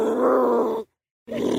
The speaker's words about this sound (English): I'm not buying a donkey that sounds like that